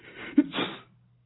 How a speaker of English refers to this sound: But, of course, as many of you know, yesterday was April Fool's Day, and I got pranked by Rainbow Dash and Pinkie Pie. I fell for the old sneezing powder in the flowers trick and been sneezing a storm of...